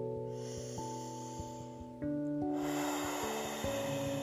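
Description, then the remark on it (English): A slow, deep breath drawn in through the nose during a short meditation breathing exercise, eyes closed, a soft airy rush that swells over a couple of seconds, set against gentle sustained musical tones. No one speaks. “So just close your eyes and just take a deep breath in.”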